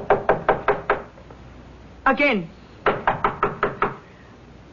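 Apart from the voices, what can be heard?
knocking on a door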